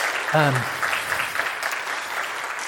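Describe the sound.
A church audience applauds steadily for a retiring minister, a dense wash of many hands clapping at once, with a brief voice rising out of it near the start before the clapping carries on.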